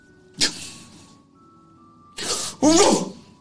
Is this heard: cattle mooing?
no